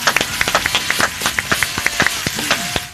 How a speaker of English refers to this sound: Slow clap for the news, apparently.